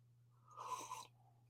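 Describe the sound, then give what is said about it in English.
A single short, airy slurp of someone sipping coffee from a swag mug, fairly quiet, lasting about half a second over a low steady hum, with no talking. “If you're enjoying some coffee like we are with our swag mugs, please join us in a simultaneous sip.”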